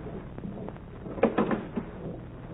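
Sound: door being opened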